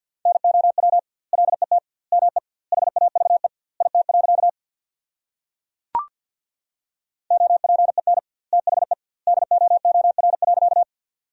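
Rapid Morse code tones at 50 words per minute with double word spacing, sending a sentence built from the 300 most common words, at a single steady mid pitch, beeping in quick bursts of dots and dashes with short gaps between words and a sharp click midway through.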